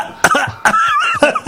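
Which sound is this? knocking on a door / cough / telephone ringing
cough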